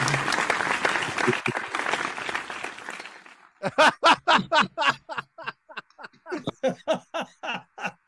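A few seconds of dense, close applause from a small group, trailing off into a run of slower, distinct claps or laughing bursts that taper away.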